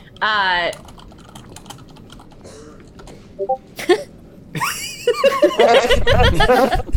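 Rapid keyboard typing clicks from someone typing in a Discord chat run throughout, while people laugh and chuckle over them in bursts.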